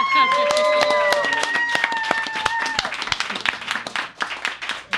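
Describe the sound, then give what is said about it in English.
An audience at a show at the Golden Tiki breaks into loud, dense applause for the competitors, many hands clapping at once, with high whoops and cheers riding over the first few seconds before the clapping thins slightly toward the end. “So, everybody, a round of applause for our competitors.”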